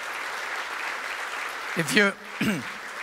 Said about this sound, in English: Give these people a clap. So good.